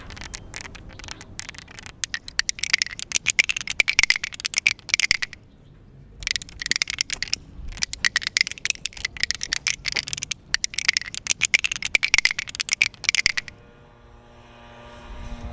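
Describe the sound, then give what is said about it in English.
A cane tip clatters rapidly over yellow raised truncated domes marking the entrance onto an intersection, a dense, bright rattling in three long bursts separated by brief pauses, then giving way to a faint steady hum. “So you see these yellow truncated domes all over the place. They're mandated by law. When I hear that sound, I know this is the actual entrance onto the intersection.”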